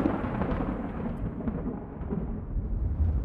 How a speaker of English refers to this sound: The rain had begun to ease off, but the thunder and lightning were still raising a fuss.